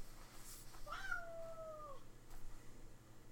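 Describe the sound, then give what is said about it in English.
A single drawn-out cat meow, rising then slowly falling in pitch for about a second, fairly soft against a low steady background hum, with no talking. “Yes, kitty, I hear you.”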